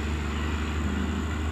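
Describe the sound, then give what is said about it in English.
A steady, low rumble of vehicle traffic runs throughout at moderate volume, broad and droning without any clear rise or fall. No one speaks. “thank you for being patient with this background noise. Dogs and crows and cars and all sorts of things.”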